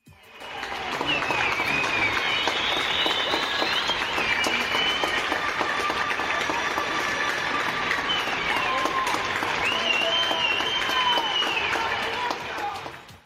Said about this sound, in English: But we have been seeing a coming together of sorts, as every night people are applauding the healthcare workers and all other workers who are still grafting for the good of everyone else. Let's have a listen to some of that.